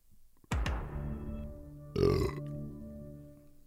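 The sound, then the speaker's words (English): The Netflix logo intro sting: two deep, booming hits about a second and a half apart, each swelling into a sustained, resonant ringing tone. No one speaks over it. “Oh, is that Dick Wolf? No, it's Netflix.”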